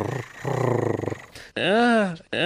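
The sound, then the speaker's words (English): A person imitates a cat's purr, a low, rhythmically pulsing vocal rumble lasting about a second, followed by a loud, drawn-out voiced cry that rises and falls in pitch. “But we win 6-1, even the series, and it makes me want to purr.”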